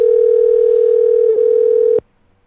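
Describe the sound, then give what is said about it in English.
A steady, loud telephone tone holds one pitch for about two seconds, dips briefly near the end, then cuts off abruptly into near silence, as a Google Voice call tries to connect. “Tone and Google Voice will try to connect you.”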